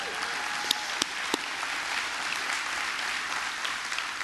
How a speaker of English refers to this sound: Well, that's worthy of applause. What do you think?